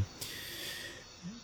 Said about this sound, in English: Don't want to be too loud, but I do want to clear my throat.